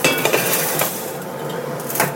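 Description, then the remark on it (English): Metal cookware clanks and scrapes, with a few sharp knocks against a steady background hiss, as a double boiler pot holding water that had been boiling is handled. No one speaks. “So I actually think I still have boiling water actually from this double boiler, but I don't know that it's boiling anymore.”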